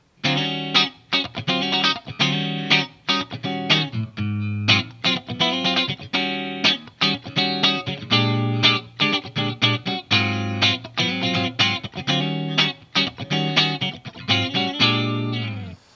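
A clean-toned seven-string Warrior electric guitar, played through both DiMarzio pickups with the coil tap (split coil), picks a continuous run of bright, ringing notes and chords at a steady, lively rhythm, loud and alone with no talking.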